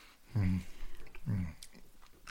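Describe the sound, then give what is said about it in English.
Crunchy chewing of crisp sourdough toast, with two low humming murmurs and a few sharp crackly bites scattered across a couple of seconds. “Yeah, that crunch. … is straight into the sourdough.”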